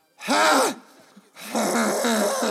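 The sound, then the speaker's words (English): A voice imitates loud snoring with two rough, rasping bursts, the first short and the second longer, separated by a brief quiet breath. Loud, with no other talk. “That's kind of what my snores sound like, right? No. Oh, my God. Your snoring is so much worse.”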